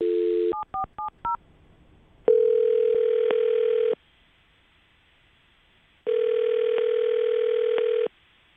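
A brief telephone dial tone, then a quick run of touch-tone dialing beeps as a radio host dials a call, followed by two long, steady ringing tones separated by a pause of silence. Clear, with no talking.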